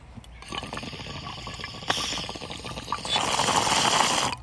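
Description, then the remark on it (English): Water bubbles and gurgles steadily in a bong being smoked outdoors, continuous for a few seconds, growing slightly louder and more intense toward the end, with no talking. “Let's take another bong rip, guys. Do you guys hear that?”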